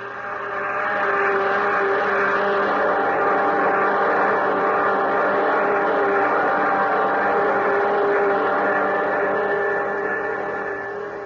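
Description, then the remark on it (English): A steady, powerful roar of a spaceship's jet dynamos hums with layered drones, holding constant at high volume for several seconds after swelling in, with no voices over it. “Those jet dynamos you see before you exist. jet dynamos driven by the harnessed power of a thousand suns.”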